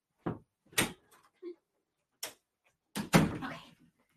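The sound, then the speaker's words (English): A door being handled: a few short clunks and a latch click, then a louder thump and rattle as it swings open to let a dog in, followed by brief shuffling. “I'm going to take just a quick minute to let my dog in, or she's going to keep scratching at the door, and we'll get started.”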